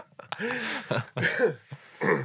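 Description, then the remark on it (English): A person who is still getting over being sick clears their throat roughly several times, with raspy, phlegmy bursts and a short cough mixed in, coming in three quick rough spurts. “If you can't tell from my nasty voice and my constant coughing and throat clearing.”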